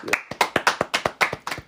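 A few hands clapping in quick, fairly steady rhythm, about ten sharp claps, like a small group giving brief applause.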